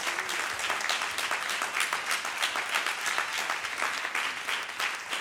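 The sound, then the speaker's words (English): An audience at a church service claps their hands for Jesus after a sermon in sustained, dense applause. Many overlapping claps form a steady, fairly loud roar throughout with no pauses. “Let's clap our hands one more time for Jesus, and then you can be seated.”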